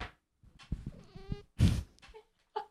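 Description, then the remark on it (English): A cat named Pickle lets out a few wavering meows in quick succession, with a louder, rougher cry in the middle and a short one at the end; no one talks. “All right, well, it's not a howl with the Bob, but it's a meow with the Pickle.”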